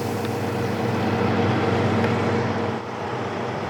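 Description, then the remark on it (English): A self-steering, GPS-guided tractor gives a steady, loud engine rumble with a low droning hum throughout, easing slightly near the end, as it places tomato plants next to drip tape in a field; no voices are heard. “That's a self-steering tractor.”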